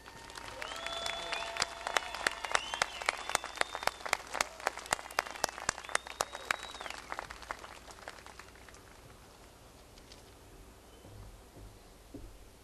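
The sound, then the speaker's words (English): An audience bursts into loud, dense applause for the keepers of the inn, Kelly and Dwayne Roberts, as they stand, many hands clapping steadily for about eight seconds before the clapping thins out and fades to a low murmur. “And finally, I would ask the keepers of the inn, Kelly and Dwayne Roberts, to stand and receive our applause.”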